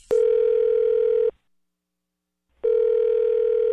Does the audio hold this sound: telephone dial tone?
yes